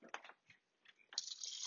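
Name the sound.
liquid poured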